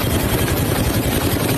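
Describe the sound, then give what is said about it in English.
Steady, loud helicopter rotor noise with a continuous engine roar and a fast low thumping underneath, filling the whole short stretch with no voices; recorded from a helicopter filming a cargo ship on fire off the coast of Yemen. “That is footage of a ship on fire from a helicopter.”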